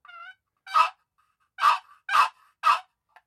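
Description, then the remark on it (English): A turkey call made from catalpa wood sounding a gobbler yelp: four loud, raspy, mid-pitched notes in a slow, evenly spaced series, opening with a short tonal squeak, with no talking. “That's the walnut, and here's a gobbler yelp on the catalpa.”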